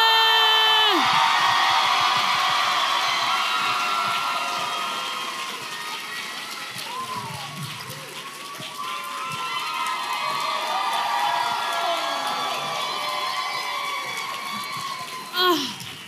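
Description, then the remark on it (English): A loud live audience cheers and whoops continuously as comedian Sashir Zameda is introduced as a guest, with high shouts and whistles rising above the roar before it gradually eases a little, then swells again near the end. “Ooh, this is a nice crowd. Hot crowd.”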